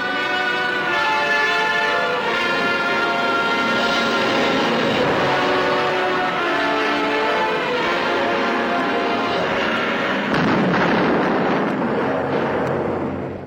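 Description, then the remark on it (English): Loud, dramatic music from the movie trailer for Mysterious Island, with sustained brassy orchestral chords throughout, swelling into a crashing, explosive burst near the end, then trailing off. No voices. “That was the trailer to Mysterious Island, as you heard.”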